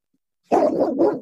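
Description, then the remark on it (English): A dog inside a car at a shop lets out two loud barks in quick succession after a brief silence, the second following right on the heels of the first. “My dog always comes to the shop with me, so he's in the car with me.”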